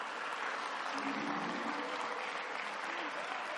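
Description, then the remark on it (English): A church audience claps steadily and densely for a few seconds, a sustained wash of applause with faint voices mixed underneath. “Let's give all of them a hand clap.”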